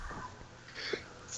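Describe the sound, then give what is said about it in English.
A single sneeze, a short breathy burst of air with a sharp hiss, moderately quiet, with no talking around it. “Bless you.”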